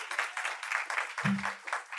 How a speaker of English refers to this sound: So one more time, please, a round of applause.